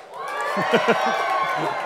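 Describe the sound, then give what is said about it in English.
A hometown TCU crowd cheers and whoops with a steady roar of voices, a few louder shouts rising out of the din, sustained throughout the short burst. “Hometown crowd there.”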